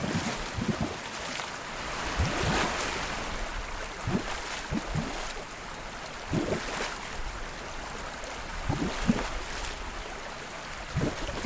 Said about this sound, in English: Each reservoir is just a little smaller than a public swimming pool. The stream next to them has a few mini waterfalls and one that includes a bubbling pipe.